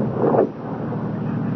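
A car engine rumbles with steady low-pitched noise, swelling briefly near the start before settling into an even drone as the vehicle slows.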